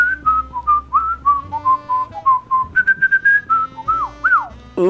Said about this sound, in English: Like a little demo of a whistle right now?